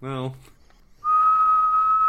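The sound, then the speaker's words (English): A brief spoken syllable, a short pause, then a person whistles a single steady, clear high note held loudly for about a second. “I mean, you can whistle, right? Can you whistle? No, I mean whistle. I just did.”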